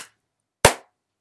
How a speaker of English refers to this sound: Let me just clap to sync it.